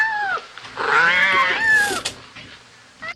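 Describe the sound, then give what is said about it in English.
One of Joel's cats lets out a drawn-out, wavering meow, preceded by a short chirp-like call, with a brief rustle and click afterward in otherwise quiet surroundings. “Well, at least Joel's cats are here.”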